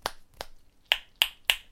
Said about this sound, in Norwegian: Noen som ikke ser, bruker andre ekkosignaler, eller andre sonarsignaler. Noen bruker hendene sine til å knipse med. Dette er knipset.